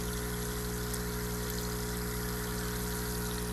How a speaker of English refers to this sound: By the way, that buzz, I'm going to bring you right on over here. This is the ozonator. See, there's that, but check out the bubbles. Can you hear them? Ozone, baby.